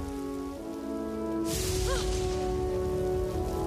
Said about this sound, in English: Storm's getting worse.